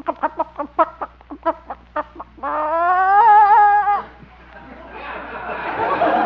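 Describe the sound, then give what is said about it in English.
A hen clucks in a quick run of short clucks as someone reaches under her for an egg, then lets out a loud, drawn-out squawk of protest, followed by rustling and flapping. “Guess I should have worn my chicken inspector badge. Well, guess I'll have to reach in under.”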